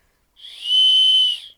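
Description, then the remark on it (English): A single loud, high human whistle, made near a creek to call a Sasquatch, held steady for about a second, rising in smoothly and fading out, with no voices or other sounds around it. “Sometimes they'll whistle back, which is something that's unique to this area.”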